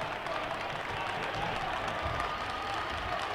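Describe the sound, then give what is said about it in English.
A basketball crowd roars and cheers for the Raiders, a dense, steady wash of applause and shouting that holds at full volume for a few seconds without letting up. “You can hear this crowd picking up the Raiders.”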